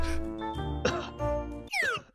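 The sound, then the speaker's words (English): A single short cough bursts out over a droning, tonal background, followed by a bright, sweeping metallic ring near the end. “I need you to cough for me.”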